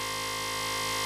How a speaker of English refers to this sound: There's a buzzer.